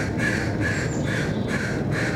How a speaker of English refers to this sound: The sound of crows is Portland to me, and the train horns throughout the night.